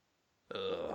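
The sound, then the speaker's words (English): After a moment of quiet, toilet pipes suddenly let out a loud, sustained, buzzing fart-like noise that rumbles on steadily to the end, with no one talking. “G you know, one of your toilets works doing that at the moment.”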